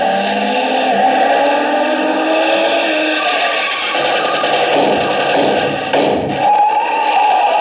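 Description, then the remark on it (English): A loud, steady engine roar of a car speeding along, droning continuously with a few dull thumps and rattles mixed in, with no one talking. “Speeding toward the same destination is another car.”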